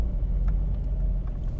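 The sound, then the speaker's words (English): Steady low engine rumble of a car driving slowly while looking for a parking spot at Casa Linda, heard from inside the vehicle, with faint brief clicks and rattles over the continuous hum and no talking. “I am right now looking for a parking spot over here at Casa Linda.”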